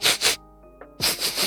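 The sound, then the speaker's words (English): Two quick, breathy sniffs, a short pause, then a longer run of rapid sniffing, loud and airy with no talking, voiced for the character Toreth the Mad as he paces in a circle around visitors. “And he sniffs.”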